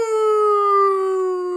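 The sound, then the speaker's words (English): A person imitates a dog's howl the way their dog Scout howls, with one steady, drawn-out tone that sinks slightly in pitch, loud for about a second and a half, with no other sounds. “So my dog Scout does this.”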